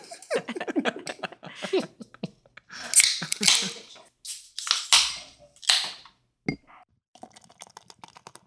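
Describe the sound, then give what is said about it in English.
Beer from Shipyard Brewing is poured into a glass: a run of quick glugging bubbles, then bursts of foamy fizzing hiss, one short clink of glass, and a soft crackle of settling froth. “That was a nice sound. It was, but it's not a great pour. It's a terrible pour. Full of fluff.”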